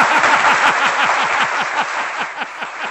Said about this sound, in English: That deserves a roaring round of applause.